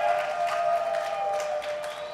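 A festival audience applauds for the band's guitarist, a steady wash of many hands clapping that holds at an even level for a couple of seconds, with a faint sustained tone running underneath.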